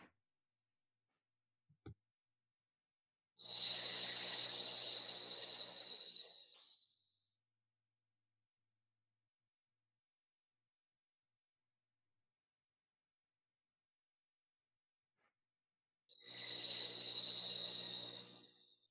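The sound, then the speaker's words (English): Two long breaths with a steady airy hiss: a long, smooth inhale through the nose, then a slow exhale through pursed lips as though breathing out through a straw, separated by a stretch of silence. No one speaks. “So we'll take a long, smooth breath in through the nose, and then exhale through pursed lips as though you're breathing out through a straw.”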